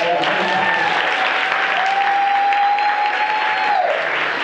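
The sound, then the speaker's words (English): Steady, loud applause from an audience welcoming a speaker at a business talk fills the whole stretch without letting up, and a sustained whistle-like tone rises and holds over the clapping for a couple of seconds. “So clap it up for Ho.”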